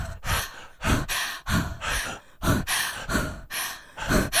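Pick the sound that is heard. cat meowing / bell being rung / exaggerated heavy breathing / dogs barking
exaggerated heavy breathing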